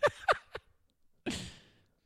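Three quick, voiced huffs through the nose, followed by a longer, harsh, breathy exhale. The sound is close and fairly loud, with no talking.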